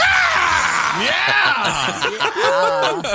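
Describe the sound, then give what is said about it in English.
Several voices scream loudly and continuously, with pitches swooping up and down in overlapping wails that fill about three seconds without a break, in an advertisement for a CD of screams. “I scream, you scream, we all scream for screams.”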